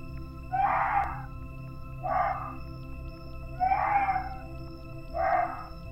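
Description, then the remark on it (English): Four loud, shrill alarm barks from a muntjac deer, spaced about a second and a half apart, ring out over a steady low background hum with no talking. “Such noise could have been made by the muntjac deer in the forest, which are known for their loud, shrill bark when alarmed.”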